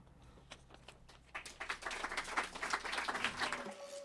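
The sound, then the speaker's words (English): Scattered claps build quickly into loud, dense applause, a crowd of hands clapping rapidly for a few seconds before it cuts off abruptly. “You, watching from your porch in the golden hours, put down your drink and loudly clap.”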